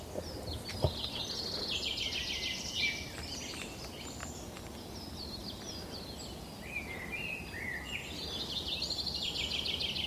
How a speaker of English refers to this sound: Blackbird singing up ahead. So the kind of your everyday garden birds can be found up here too. Look at that lazy, soporific song of the blackbird.